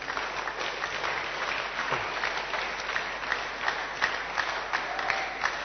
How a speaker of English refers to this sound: You know, you clap for them, you see.